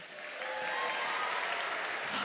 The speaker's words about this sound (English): Question number two. Professor Potions or the Hulk? Who would win? Okay. Again, round of applause if you think I would win.